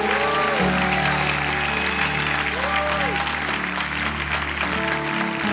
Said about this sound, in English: Let's once again give him a clap of praise.